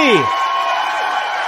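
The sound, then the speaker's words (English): A loud, steady wash of audience clapping and cheering at the live opening of the show My Fellow Americans with host Spike Cohen in Myrtle Beach, South Carolina, opening with a brief falling whoop before settling into dense, continuous applause. “Keep clapping. Clap for the miracle.”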